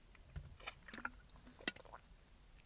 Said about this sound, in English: I'll give you an example as I close out today's session, and I'm just going to have a sip.